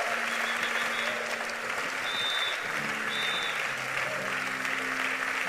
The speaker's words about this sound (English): The way you clap for them, that's how they will clap for you this year.